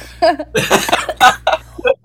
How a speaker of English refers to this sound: No, I'm just, like, coughing a little bit, too. Oh, sorry. No, it's fine. I gave you my disease over Zoom.